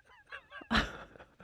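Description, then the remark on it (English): A bird honks, goose-like: a few short nasal calls followed by one loud, harsh honk, then quieter calls trailing off. No one speaks. “Did you get a look at that bird?”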